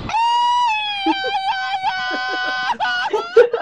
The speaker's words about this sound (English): Enough of that. No one wants to hear your rebel yell. That's not me, bro. That's the audio team.